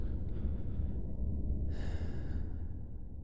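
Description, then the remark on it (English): Two slow, heavy breaths, a long exhale followed by a deeper, airier breath, with no talking, settling into a steadier rhythm as someone steadies their breathing. “Steady my breathing.”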